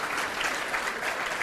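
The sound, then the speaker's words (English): A steady wash of audience applause for the night's participants, many hands clapping together in a dense, continuous roar with no talking over it. “Round of applause, please, for our participants tonight.”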